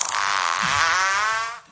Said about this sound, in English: just my ringtone, that honey. That is uncalled for. It does jingle bells, too.